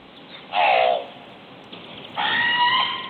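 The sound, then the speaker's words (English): Two loud, harsh crow caws, the first short and wavering, the second longer and steadier, separated by a quiet gap with no talking. “Yeah, here's what the crow sounds like.”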